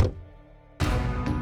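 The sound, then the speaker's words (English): Car doors shut around 5:45 p.m. as two people get into a car, one in the passenger seat and one in the back: a car door thumps shut, followed by a second heavy slam and a sharper knock, with a brief hush between the first faint thud and the louder shutting sounds. “But the mood shifted as soon as they shut the doors.”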